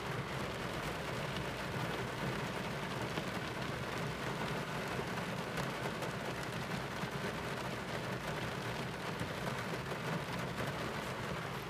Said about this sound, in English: I just want to listen to the rain before we start.